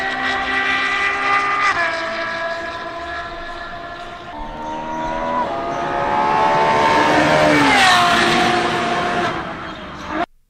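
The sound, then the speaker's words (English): A high-revving F12-based sports car engine of about 769 horsepower howls along a track, climbing through several gear changes and swelling louder as it sweeps past, then cutting off abruptly. No one speaks. “This was the coverage that F-Spot, it's EFSSPOT, had for it with his drive covering it on the track.”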